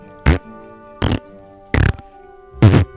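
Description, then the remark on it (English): Four short, buzzy fart noises blown with the mouth, evenly spaced about a second apart, each a loud, sputtering burst with quiet pauses between them. “Yeah, can you make a fart noise?”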